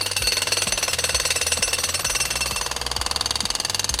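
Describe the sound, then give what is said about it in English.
A voice imitates a jackhammer with a loud, rapid, steady rattling burst that keeps hammering without a break for several seconds, harsh. “Oh, I love it when I get to be the jackhammer!”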